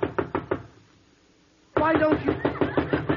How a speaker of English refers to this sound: Now, come on. Get with it. Now, I knock on your door.